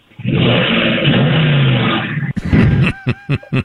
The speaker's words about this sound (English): But I got this Dodge Challenger that has super loud pipes on it. Listen to this.